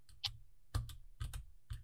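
Quick, irregular taps on a computer keyboard, several sharp clicks in small bursts, moderately quiet, with no voices.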